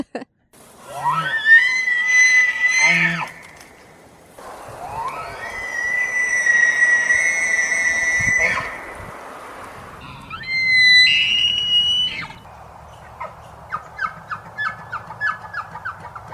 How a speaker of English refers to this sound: And it's not uncommon to see lots and lots of wildlife, especially elk. And I've been there in the fall when they're bugling. It is a very interesting sound. It's cool, but it's also a little bit creepy.